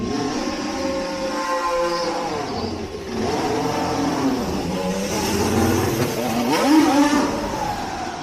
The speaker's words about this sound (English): But yeah, let's just play this video right here for you guys of Mick Schumacher coming out on track just a little bit earlier here from Haas.